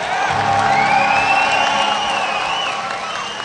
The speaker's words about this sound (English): Once again, ladies and gentlemen, boys and girls, welcome to Final Fantasy XI Fan Festival 2007. Can I hear an applause out there?